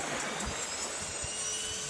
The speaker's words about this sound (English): Right engine is turning.